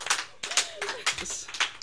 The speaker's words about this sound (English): All right, you guys got to give him an extra big round of applause.